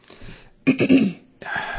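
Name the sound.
cough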